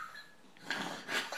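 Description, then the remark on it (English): A quiet sneeze: a brief breathy intake followed by a sharp, hissing burst of air. No one speaks. “Gesundheit.”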